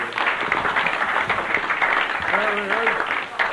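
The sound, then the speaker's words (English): An audience claps steadily and loudly for several seconds for a man introduced as their brother, a dense patter of many hands, while a voice briefly calls out over the applause toward the end. “Give him a clap.”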